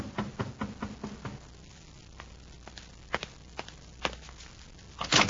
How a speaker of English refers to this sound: An hour later, there's another knock at the door.